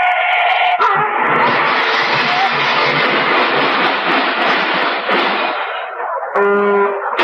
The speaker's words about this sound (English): Hey, look out for that car